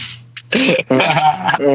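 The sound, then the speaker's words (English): A loud cough: a short raspy burst, then two longer rough, throaty hacks run together, with no clear speech around it. “Definitely coughed on his taco.”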